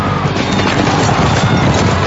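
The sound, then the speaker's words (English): Racehorses break from the starting gate and gallop, a dense, loud, continuous rumble of many hooves with no voices over it. “The horses are at the gate.”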